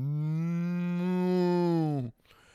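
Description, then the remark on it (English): A person does a long, drawn-out moo like a cow, one loud sustained call lasting about two seconds before cutting off abruptly, with no other talking. “Even though that's pretty much glorified cattle, I will be the best goddamn cow you ever see.”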